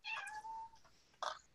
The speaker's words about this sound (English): Meow.